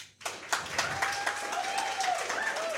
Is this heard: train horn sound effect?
no